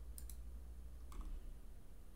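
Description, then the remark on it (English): A few quick, light clicks from a computer mouse button as someone clicks a 'start your adventure' button, two close together and then another pair a moment later, over a quiet low room hum with no one speaking. “I'm clicking start your adventure.”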